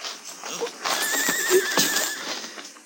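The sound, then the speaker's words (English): A horse whinnies with a wavering, drawn-out neigh, mixed with scattered hoof clops and shuffling; the sounds are moderately loud, with no talking. “I'll take my horse then”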